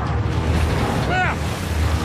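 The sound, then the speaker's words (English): A steady, heavy rush of ocean water in a video game, with deep rumbling churn filling the whole stretch like surging waves, and a brief rising tonal whoosh partway through. “This water stuff's insane.”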